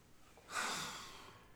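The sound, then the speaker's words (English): A dog lets out a single rough, breathy snore that swells suddenly and slowly trails off, fairly quiet, with no one talking. “For any of y'all who can't hear, my dog is whining like a bitch. He snore.”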